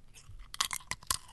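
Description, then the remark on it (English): Crunching on a Hula Hoop potato ring crisp: a handful of sharp, crackly bites in quick, uneven bursts, fairly loud against an otherwise quiet background with no talking. “I tell you what, with a hula hoop. Not with crunch.”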